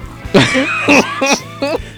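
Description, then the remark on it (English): A series of four short, harsh coughs, fairly loud, coming in quick uneven bursts with brief pauses between them and a low hum underneath. “You both have coronavirus, by the way. I can hear it in your coughs.”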